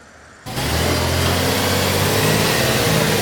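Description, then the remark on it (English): After a brief quiet moment, a heavy works truck engine at the Vancouver works yard suddenly roars up and keeps rumbling loudly and steadily, with a deep droning tone and no voices, as trucks get ready to brine and salt roads before a snowstorm. “In Vancouver, trucks have been brining and salting major roads, bus routes, bridges, and streets around hospitals.”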